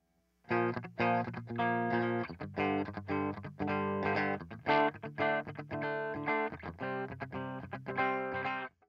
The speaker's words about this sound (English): Here's our amplifier with our EQ pedal.